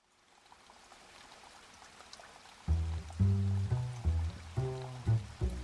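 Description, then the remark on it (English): A soft, steady hiss of falling rain on a gray day in Frankfurt fills the background, and about halfway through, low sustained musical notes enter in short phrases over the rain. “It was a gray, rainy day in Frankfurt when Stanley Rouse woke and walked to breakfast.”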